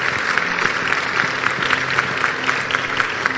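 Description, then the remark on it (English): An audience at a Christian church service claps for Jesus after a prayer, in steady, sustained applause, dense and fairly loud throughout, with a faint hum of voices underneath and no one speaking clearly. “Clap for Jesus.”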